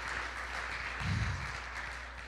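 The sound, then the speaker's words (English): An audience at a morning church service clapping their hands together, a dense, steady wash of many overlapping claps that holds at an even loudness throughout, with a brief low thump partway through and no talking. “Come on, clap our hands like we really mean it this morning.”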